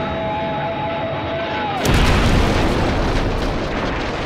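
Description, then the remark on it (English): A steady, droning aircraft engine whine cuts off abruptly in a loud crashing explosion, followed by a broad roaring rumble that holds for several seconds without fading much. “Now, Scott, what did I just say about crashing into the ground?”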